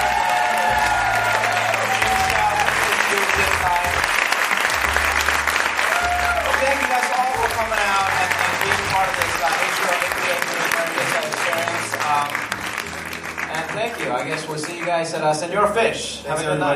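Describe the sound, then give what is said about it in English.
A crowd at an HBO Visionaries program event applauds the presenters loudly and steadily for over fifteen seconds, a dense wash of clapping with scattered cheers and indistinct voices mixed in, tapering slightly near the end. “One more round of applause for us.”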